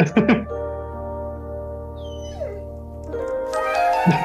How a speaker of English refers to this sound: Dogs.